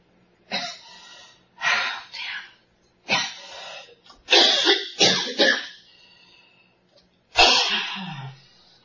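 A person coughs repeatedly during a test while hooked up to computer measuring connections, unable to sit still: a series of harsh bursts with short pauses between them, then a final loud cough after a brief gap.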